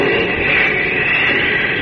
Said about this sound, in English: High in the sky near the coast of Europe, Superman has heard the droning motors of an approaching plane above a raging storm.